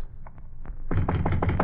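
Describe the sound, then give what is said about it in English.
Knocking on an office door: a few light, scattered taps, then a louder, quicker run of raps. No voices. “Should we knock? Should we go home? We'll knock.”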